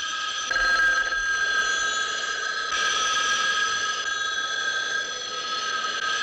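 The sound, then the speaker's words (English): A telephone bell rings steadily and insistently for several seconds, a bright, sustained metallic jangle that stays loud throughout, with no voices. “There is no phone ringing, damn it!”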